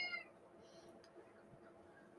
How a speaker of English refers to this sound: You hear the cat? Typical, isn't it? Typical. Cat. Yes. Everyone can. Sorry, listeners. Apologies, as per usual.